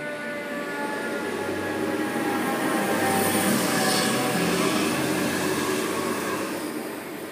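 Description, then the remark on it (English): A fire truck rolls past with a deep, steady engine roar that swells toward the middle and eases off again, steady droning tones running through the rumble. No one speaks. “Now I got a fire truck going by.”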